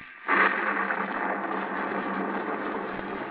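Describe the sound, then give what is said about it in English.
A thunderstorm roll of thunder bursts in suddenly over a muddy, rain-splattered road and a southern village under a lightning-streaked sky, and keeps rumbling loudly and steadily, a dense, continuous roar with no voices. “A small, lonely stone building appears against the lightning-streaked sky.”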